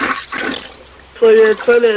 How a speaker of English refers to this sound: So your toilet is flooding. It come over the top and on the floor when I flush now. And see, I flush, and then there's water coming over. It's on the floor.